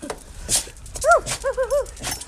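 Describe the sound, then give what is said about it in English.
A dog whimpers excitedly, one arched whine followed by a quick run of three or four high, wavering whines, with light shuffling noise around them, greeting its owners as they come in. “Okay, guys, this is our dogs. We're just coming in.”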